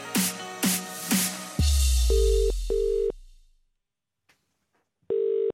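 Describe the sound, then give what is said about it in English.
A telephone ringback tone from a prank phone call by the talkSPORT breakfast team to Ray Parlour. It purrs in a double-pulse pattern, two short rings, a pause, then another ring, clear, following a few sharp musical hits and a low rumble. No one speaks. “the TalkSport breakfast team took the opportunity to play a little prank on Ray Parlour, even though, by the way, the phone call was made the day before, so it wasn't even in April.”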